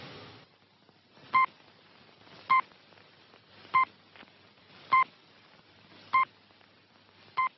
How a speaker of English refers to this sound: A small control panel slides out. Arthur watches the clock, and then he pushes a button, creating short dings or pips on the last 6 seconds of the hour.